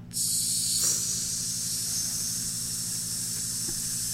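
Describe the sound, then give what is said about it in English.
A steady, loud sizzle sound effect like meat frying on a hot grill, introducing a segment sponsored by Dirt Burgers, hissing continuously for several seconds over a low humming drone, with no one speaking. “Sizzling hot takes brought to you by Dirt Burgers.”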